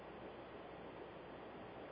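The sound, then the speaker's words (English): A steady, dense hiss of heavy rain pours down without a break, a constant wash of noise with no voices and no distinct drops standing out. “And as I am speaking right now, there's a huge downpour of rain that just started happening here where I am, symbolic of the radiance pouring through.”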